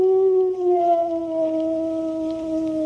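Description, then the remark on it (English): A dog lets out one long, mournful howl, its pitch sagging slowly downward as it holds the note for several seconds. It's loud, with nothing else to be heard. “And because Jimmy was so gloomy, Jimmy's dog felt gloomy, too.”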